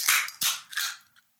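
A can of rosé wine being popped open: sharp metallic cracks, each trailed by a bright, fizzy hiss, then a brief quiet click at the end. No one speaks.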